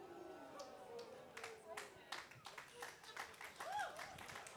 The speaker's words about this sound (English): The clap comes awkwardly because a lot of us are like, dang, I did that last night.